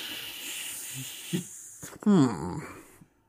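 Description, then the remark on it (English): A voice imitates cassette tape hiss with a steady, breathy shushing for nearly two seconds, moderately loud, then breaks into a short burst of voiced, warbling vocal noise. “There's hiss on the tape.”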